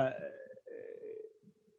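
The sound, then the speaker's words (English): A long, drawn-out belch with a croaky, voiced tone, briefly breaking midway before rumbling on and trailing off, with no talking over it. “That was a good belch. That was a garage belch.”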